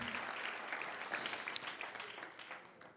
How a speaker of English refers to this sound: Will you clap your hands to the Lord? Thank him for what he's done and for what he's about to do.